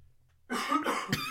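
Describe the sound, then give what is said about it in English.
A sudden, forceful sneeze bursts out of near-silence, harsh and breathy, with a rough trailing exhale that lingers for under a second. No one speaks. “Bless you.”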